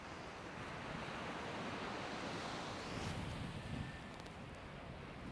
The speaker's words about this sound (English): Beautiful watching the ocean right now.